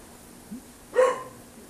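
A single short dog bark rings out against a quiet background, preceded by a faint, brief low sound; no one is speaking.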